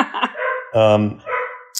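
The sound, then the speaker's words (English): A dog lets out a few loud barks in quick succession, with drawn-out, whining, tonal yelps between short sharp ones and a brief high squeak at the end. “Oh my gosh, dog.”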